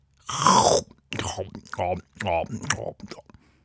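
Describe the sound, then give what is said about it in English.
A voice imitates loud, wet chewing: a noisy smacking burst, then a few moist, mumbling chomps with vocal grunts mixed in. “The answer was followed by some rather loud and wet chewing.”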